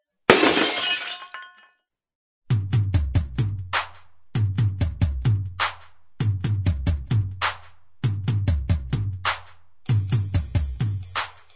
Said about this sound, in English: Oh, no! Oh! Oh, no! Stop! No! You do not! Oh! Oh! You do not break! Oh, stop that! You do not break glass over my head.